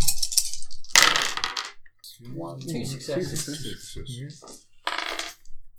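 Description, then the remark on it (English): Five dice and a black stress die clatter and rattle across a hard table in a quick burst, then a voice speaks briefly before another short rattle of dice follows near the end. “So there's five dice and your stress die.”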